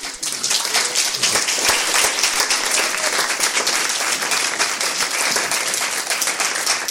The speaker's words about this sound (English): That applause is a tribute to the incisive and eloquent insights you've given us today.